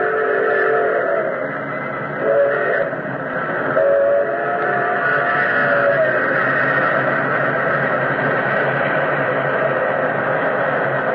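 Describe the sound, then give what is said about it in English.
An express train engine roars out of a tunnel mouth and past, a loud, steady, thundering rumble with a rushing hiss, and brief whistle-like tones rising early on before the din continues unbroken to the end. “Like an incredible, fiery-eyed monster, the express engine roared out of the tunnel mouth.”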